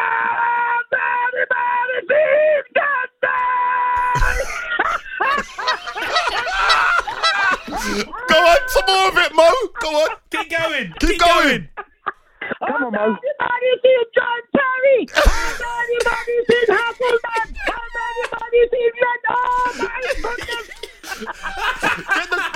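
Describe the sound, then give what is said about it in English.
A phone caller from Toronto imitates honking duck calls in repeated nasal bursts, fairly loud, while other people talk and egg it on between the honks. “Get the ducks in.”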